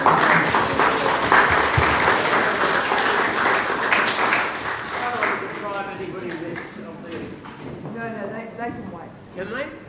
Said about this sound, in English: Father Bob's an ambassador for our Frankston Raj and very, very welcome for the Australian Unemployed Workers Union. Let's give him a clap.